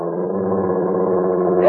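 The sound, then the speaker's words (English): A wolf growls low and steadily for nearly two seconds, loud, then flares into a brief sharper snarl at the very end. No voices are heard. “I see the damn thing! It's a wolf!”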